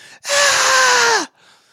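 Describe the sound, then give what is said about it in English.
A person lets out a single whisper scream, a loud, airy, hissing burst lasting about a second, with a faint strained pitch that slides downward as it cuts off abruptly. “And so you put your own hand on the stove and just scream, a whisper scream.”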